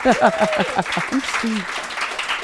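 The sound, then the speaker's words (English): A burst of clapping fills the scene, many hands applauding in a dense, steady patter with a few voices briefly audible underneath. “I love the clapping.”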